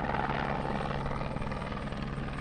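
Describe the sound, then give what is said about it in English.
Two helicopters that have just landed on a plateau just under Cabazon Peak, in landing zones about 60 meters apart, rotors slowly winding down: a steady, loud roar of rotors and engines, dense and continuous with a low throbbing hum underneath, without any voices. “And these two birds have landed, and we've cleared two adequate landing zones approximately 60 meters from one another on a plateau here just under Cabazon Peak, and the rotors are slowly coming to a”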